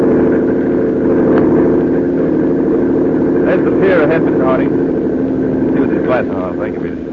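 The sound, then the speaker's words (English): A speedboat engine in Cuba drones loudly and steadily throughout, a constant rumble, with brief indistinct voices surfacing over it near the end. “Good idea, Dave, taking this speedboat instead of a plane.”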